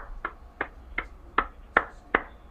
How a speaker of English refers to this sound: That's my applause for a great career.